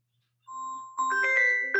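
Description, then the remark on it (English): A phone's incoming-call chime: one steady electronic tone, then a brighter cluster of layered ringing notes that pulse a few times, at moderate volume with no voices. “Sorry, phone calls come in.”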